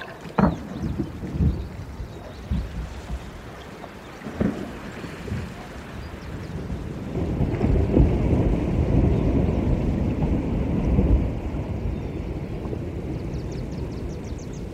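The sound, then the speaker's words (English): A glacier calving off an iceberg, recorded by an artist for the Wild Sanctuary album: a few sharp, deep cracks and thuds give way to a long, heavy rumbling roar that swells for several seconds, then slowly settles into a low wash of water. “…, who recorded these marine mammals, also caught the sound of a glacier calving off an iceberg.”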